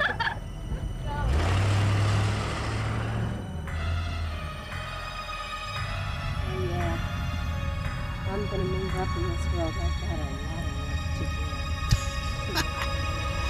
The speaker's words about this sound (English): There's the car.